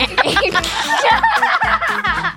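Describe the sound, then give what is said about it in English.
A voice imitates animal calls, with quavering goat-like bleats mixed with quick nasal duck quacks, repeated in a steady, lively string that stays loud for a couple of seconds. “I've become one with the duck goats.”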